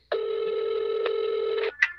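A steady, buzzing telephone tone holds for about a second and a half, then cuts off and a short electronic beep follows, like a phone line connecting and ringing, as a call is placed to Murray's phone number from the show's season 3.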